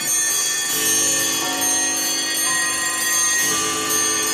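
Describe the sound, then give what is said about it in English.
A dense wash of synchronized clock bells and chimes rings out together with ticking clocks, loud and sustained, with fresh strikes layering over the lingering tones every second or two. No one speaks. “We know they do this incredible synchronization of the clocks ticking. Bells ringing.”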